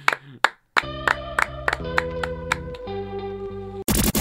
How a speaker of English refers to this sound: Let's send them off with a clap